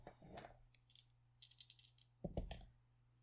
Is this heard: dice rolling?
yes